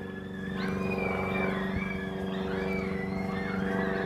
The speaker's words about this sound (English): It was a prop plane and it was pretty low, so it was really loud.